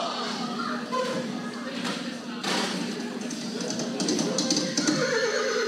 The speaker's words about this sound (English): And the sound of those horses can only mean one thing.